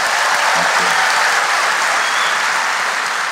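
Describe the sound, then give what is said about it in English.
Loud, sustained audience applause for Jeffrey Toobin at the town hall, a dense steady wash of many hands clapping that fills the whole stretch without letting up, with no voices standing out. “I have a couple of final words, but before I do that, everyone, big round of applause for Jeffrey Toobin.”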